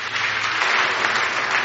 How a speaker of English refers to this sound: Clap for Jesus for that.